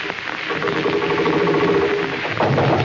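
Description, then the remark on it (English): A sewing machine sound effect: a steady, fairly loud mechanical whirring with a humming tone running through it, continuous for about three seconds with no voices. “That's supposed to be a sewing machine, folks.”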